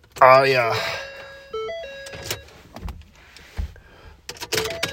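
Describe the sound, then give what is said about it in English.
A car's door-open warning chime sounds as a short run of steady electronic tones as the car is started with the door not shut, with a voice at the start and scattered clunks and rustles around it. “My door's not shut.”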